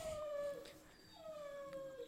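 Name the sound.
dog howling and whimpering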